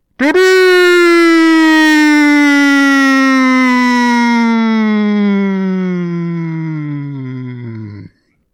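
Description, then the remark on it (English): A single long, deep horn blast warning of approaching foes sounds alone, a loud brassy tone held for about eight seconds, its pitch slowly sagging lower before it cuts off abruptly. “No, it was two blasts for foes approaching.”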